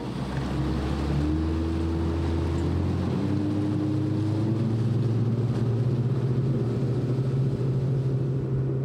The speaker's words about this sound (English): Paul unties our boat, and we push off into the channel.